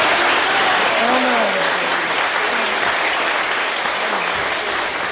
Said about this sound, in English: But give him a clap.